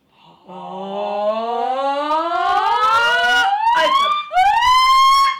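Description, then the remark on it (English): A single voice slides in a long, slow upward glide from low to high pitch, breaks briefly, then resumes a higher rising sweep, loud and sustained like an imitated whale call. “Because I feel like I'm speaking whale.”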